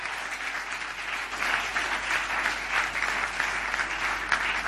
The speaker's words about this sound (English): Let's give Jesus a big clap of praise.